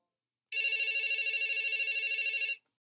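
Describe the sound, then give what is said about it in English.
A telephone rings as two friends call each other, one continuous, rapidly trilling bell burst lasting about two seconds, loud, then stops abruptly into silence. No one speaks. “Parker and his friend Caden were calling each other on the phone.”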